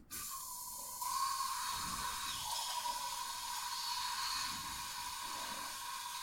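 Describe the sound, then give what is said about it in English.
A continuous aerosol hiss of hairspray being sprayed into a drink, steady and fairly loud, starting abruptly and holding for about six seconds with a broad, airy high-pitched rush and no voices. “And I'm just, while he's away, I'm quickly just spraying this hairspray into his drink.”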